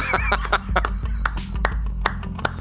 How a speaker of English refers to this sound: I've never clapped on the podcast before. This is the first.